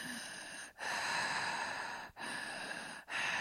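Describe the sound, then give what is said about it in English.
A voice imitates heavy, muffled breathing: long, broad hissing breaths in a steady cycle, broken by three brief pauses, with no speech. “So now we cut to some muffled breathing.”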